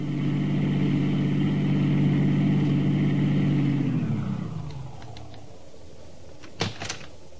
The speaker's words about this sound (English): I turned the car around and headed back for Lerner's place as fast as I could.